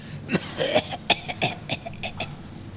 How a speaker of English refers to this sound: you're making fun of the fact that you coughed